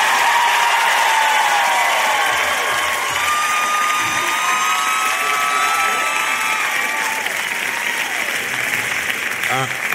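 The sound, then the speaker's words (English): A large crowd, an audience at UC urged to make noise, cheers and claps without pause, with high whoops and yells rising and falling over a dense, steady roar of applause that stays loud throughout. “Come on, UC, make some noise.”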